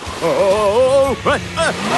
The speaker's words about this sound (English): Sir Topham Hatt's car slid out of control on the ice and snow. The car hit a big pile of snow and got completely stuck.